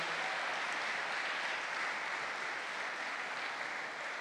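A crowd applauds steadily, dense overlapping clapping sustained at an even level from start to finish, with no voices standing out above it.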